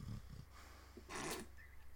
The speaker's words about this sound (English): That's the inhuman growling from the puppy.